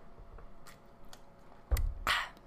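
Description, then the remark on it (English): Someone takes a quick drink of water: a few faint clicks, a soft thump, then a short gulping, swallowing burst, with no talking. “but hold on, water.”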